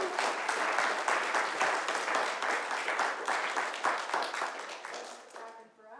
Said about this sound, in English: So with no further ado, let's have them come on up and share with us. And a rousing round of applause